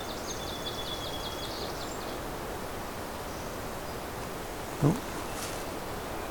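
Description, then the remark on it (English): A thin, buzzy series of high notes climbs quickly and ends in a brief upward flourish, a northern parula singing. A soft hiss of outdoor background and a single short knock follow. “Heard northern perula again.”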